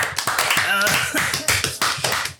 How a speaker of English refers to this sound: So last time we played, you guys, you finished the season. Good job. Hey-o! Round of applause. Oh, we did it.